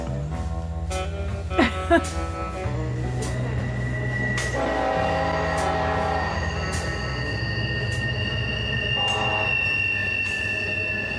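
A train rumbles steadily past in the small town of Kermit in southern West Virginia while its horn sounds long, sustained blasts, with metallic wheel screeches and clanks layered over the deep, continuous roar of the cars.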